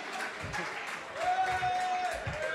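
An audience applauds steadily, a dense wash of clapping that holds at an even, fairly loud level throughout, with a thin sustained tone briefly rising above it midway.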